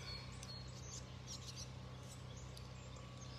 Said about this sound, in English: We got some birds singing.